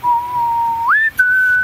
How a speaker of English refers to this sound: While filling up the Sparhawk delivery truck one day, the driver heard a whistle coming from behind him. A 3-note whistle.